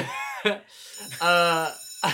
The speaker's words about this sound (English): and that's our bell. I believe that an octopus slapped the bell, so it sounded like that, but it was worse.